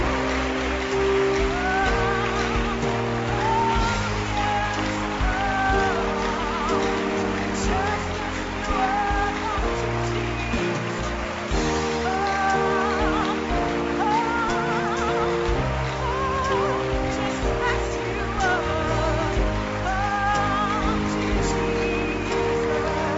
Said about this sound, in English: Your hand clap is making a sound. Listen.